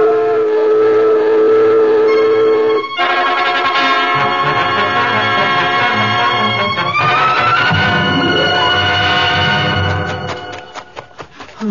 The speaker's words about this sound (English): Sound the alarm! I've given the signal.